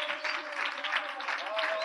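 An audience claps steadily together, giving the Lord a round of applause, a dense, sustained wash of applause from many hands, with a faint held musical tone running underneath.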